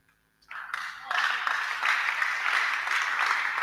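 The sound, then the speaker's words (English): An audience bursts into applause after a brief quiet moment, the clapping swelling quickly into a dense, steady roar of many hands that holds loud and even to the end. “Those who are not clapping, I am gradually ending the message.”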